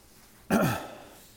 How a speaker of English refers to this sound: I'll apologize in advance if I sound stuffy or keep clearing my throat. The wind was pretty brutal today and kicked up a lot of stuff, so struggling just a little bit in the sinuses and it's draining back into my throat.